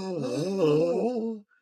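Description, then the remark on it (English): A single voice lets out a drawn-out, wavering 'ooh' for over a second, mimicking a crowd's shocked gasp, then it cuts off into silence. “Crowd gasps.”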